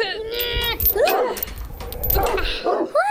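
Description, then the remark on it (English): Dogs below a high fence bark, yip and snap their teeth excitedly: loud, overlapping yelps and snapping bursts that come in quick, uneven volleys over a few seconds. “The dogs can't get me. The fence is too high.”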